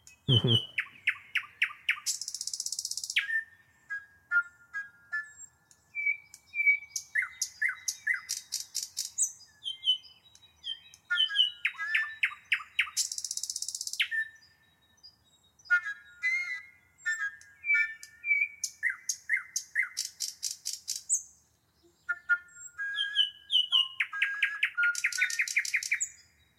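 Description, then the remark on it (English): A nightingale sings alone and clear in Berlin, from the film Nightingales in Berlin, in varied phrases of rapid repeated chirps, liquid whistles and harsh buzzy bursts, separated by brief pauses. “I want to take a brief break here, maybe hear something from Nightingales in Berlin for just a few seconds, and then move over to this language of praise.”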